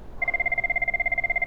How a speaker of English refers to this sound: The phone ringing off the hook with eager and hungry customers. It's what I've missed the most.